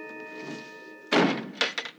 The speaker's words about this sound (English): She slams the door in his face, and he knocks again.